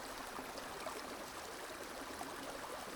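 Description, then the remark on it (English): Steady, continuous rush of flowing river water with a fine bubbling texture, even in level throughout and heard alone with no voices. “Just let this phrase rest in your heart and your mind as we listen to the sounds of the river for a few more minutes.”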